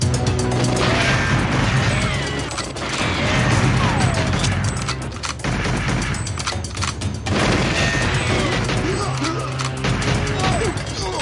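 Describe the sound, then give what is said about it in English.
Loud, dense gunfire from the video game GoldenEye crackles nonstop, with its sharp metallic bullet ricochets pinging and whining over the clatter, their pitches sliding downward in quick bursts throughout. “Listen to that iconic bullet pinging.”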